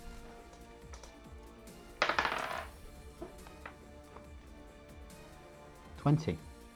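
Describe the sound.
Dice clatter and rattle across a table in two short bursts, a few seconds apart, rolled for a stealth check, with murmuring voices in the background.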